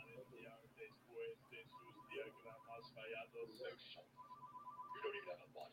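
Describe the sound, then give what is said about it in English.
A telephone rings in two repeated bursts of rapid electronic trilling, moderately loud, while voices talk over and around it. “Yeah, for the love of evil, someone get the phone.”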